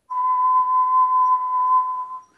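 A person whistles one steady, piercing high note held for about two seconds, flat and unwavering enough to resemble audio feedback, then it cuts off.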